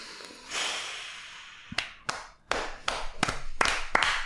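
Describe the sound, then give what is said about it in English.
A breathy hiss gives way to about seven sharp hand claps at an uneven, slightly quickening pace, fairly loud, with no talking. “I'll clap.”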